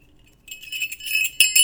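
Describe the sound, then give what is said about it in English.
A small Christmas ornament bell jingles, a bright, tinkling shimmer of quick repeated rings that swells and ends with a couple of sharper strikes, with no voices. “Do you still hear the bell? Because that means you still believe in Christmas.”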